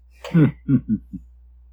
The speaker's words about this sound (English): So sorry. Coughing. Pardon me.